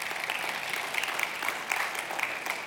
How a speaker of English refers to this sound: We're very thankful for the quality of the online stream. We're also very thankful, you can clap for that for sure.